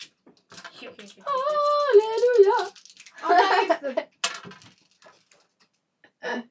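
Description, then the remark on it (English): A ten-sided and a six-sided die clatter and tumble across a tabletop in a short, rattling burst for a sneak roll in a tabletop game, followed by a sharp click or two, with voices exclaiming around the rolls. “Give me a sneak roll.”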